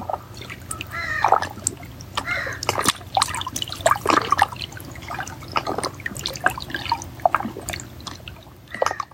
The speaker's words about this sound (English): Water the music maker. Water the carrier of light. Water carries emotions.